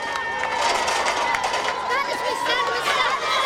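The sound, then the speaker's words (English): A lively crowd of street children cheers and shouts in overlapping high voices as the metal gate of a fire station in a Baghdad suburb is shoved open, steady and loud throughout, with scattered claps mixed into the excited din. “When the metal gate is shoved open at the fire station in this Baghdad suburb, the street children clap their approval.”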